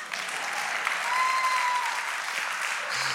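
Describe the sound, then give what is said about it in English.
An audience claps steadily throughout, a dense, even wash of many hands at moderate loudness with no pauses, plus a faint whistle-like tone partway through. “If you're going to clap, you're going to clap for real.”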